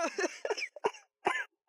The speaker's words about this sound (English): I just coughed in that laugh.